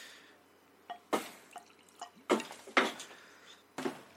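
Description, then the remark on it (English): A fruity-smelling drink from a freshly uncorked bottle glugs and splashes into a wine glass in a series of irregular bursts, fairly clear, with quiet gaps between them and no talking. “let me get my wine glass.”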